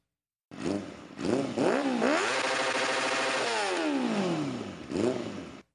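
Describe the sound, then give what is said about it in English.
A motorcycle engine revs hard, with a few quick throttle blips, then holds at the rev limiter in a steady, stuttering howl before winding down and blipping once more. “Here's the rev limiter.”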